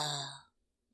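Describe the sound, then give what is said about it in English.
A short voiced yawn by a girl, a breathy, drawn-out exhale with a low hum that fades out after half a second, clear, followed by silence. “the girl gives another yawn.”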